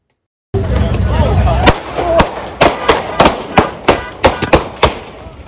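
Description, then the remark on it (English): A rapid string of about ten sharp, loud gunshots cracks out in irregular succession during a fight at a Hollywood party, over a noisy, rumbling background. “I could play a video of the gunshots.”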